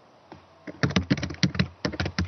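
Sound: typing on a keyboard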